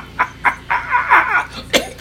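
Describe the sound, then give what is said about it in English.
A man clears his throat with a few short, rough bursts and a longer gravelly, voiced rasp in the middle, ending on one final sharp hack. No one speaks. “Frog in my throat.”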